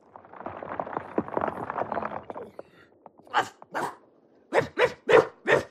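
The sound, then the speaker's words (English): A dog barks six times, loud: two sharp barks, a short pause, then a quicker run of four, following a few seconds of dense, busy chattering sounds. “And that must be goodbye in dog.”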